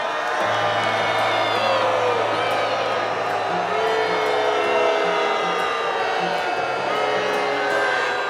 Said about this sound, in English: This was one of the worst responses to Graham I've ever seen or heard, with sustained booing, shouts, and chants, even when Graham tried to find some common ground by praising Trump.